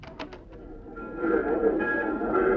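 A train leaving on track 5 for Anaheim and Azusa pulls out of a station, its low rumble and hissing clatter building steadily louder after a few short clicks, with a faint tonal whine running through it.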